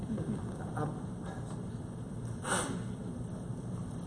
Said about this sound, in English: Excuse me just a moment while I blow my nose. Would you mind doing that?